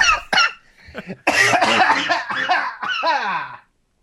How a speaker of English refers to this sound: Yeah. Was that a real laugh or a fake cough? No, this is coughing. I'm choking on water.